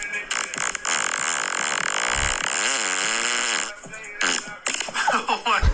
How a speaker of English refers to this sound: Anyway, next fart.